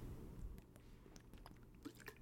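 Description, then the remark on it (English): A person drinking water, picked up by a new microphone: quiet wet sips and mouth clicks in a soft, irregular run over a low background hum, with no talking. “And sorry, you're hearing me drink water.”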